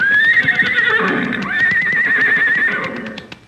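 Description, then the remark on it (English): A horse gives two long, loud whinnies, the second rising and wavering, while hooves clip-clop steadily as horses are brought over. No one speaks. “Well, here he comes with the horses.”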